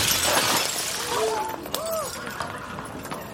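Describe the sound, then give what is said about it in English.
A wild horse crashes into a man's delivery cart: a loud crash of shattering glass bursts out in a bright, hissing rush, followed by scattered clinks and tinkling debris, with a few brief tonal vocal-like sounds mixed in. “Right into that man's delivery cart.”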